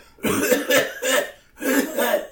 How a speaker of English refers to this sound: Yeah, I critically failed my scrutinize test to talk. You start coughing violently. Yeah, I cough violently at the door.